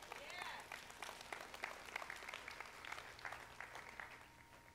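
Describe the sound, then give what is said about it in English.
A scattered smattering of audience applause, a modest number of hands clapping irregularly for a few seconds, moderately loud with a faint murmur beneath. “Appreciate that smattering of applause.”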